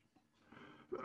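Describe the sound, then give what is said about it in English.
A faint, breathy intake of air gives way to one sudden, harsh cough that swells loud and rough before cutting off abruptly. “Pardon my cough.”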